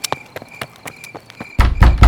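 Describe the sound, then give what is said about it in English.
Quick, evenly spaced footsteps of someone running up an alleyway, around a corner and down a street, light at first, then turning into louder, heavier thuds. No voices. “I walked back slowly, and then spun around and ran up the alleyway, around the corner and down the street.”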